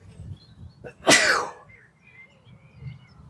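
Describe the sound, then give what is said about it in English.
A single loud sneeze, brought on by being in a polytunnel, bursts out sharply with a brief breathy intake just before it, then fades into quiet background rumble. “I'm going to sneeze though.”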